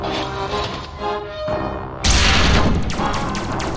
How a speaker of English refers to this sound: The massive guns swiveled and fired in the directions of the scouts. The cloud brightened as the shells exploded, sending shrapnel and a concussive force that knocked the small alien aircraft out of the sky.